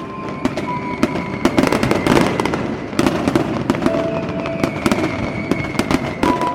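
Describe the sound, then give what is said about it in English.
Fireworks burst over Hudson Bay, watched from countless boats on the water, in a dense, continuous barrage, sharp cracks and booms overlapping with crackling pops amid a steady rumbling wash of noise. “He filled it with friends and family, and they joined the countless other vessels in Hudson Bay, enjoying the fireworks.”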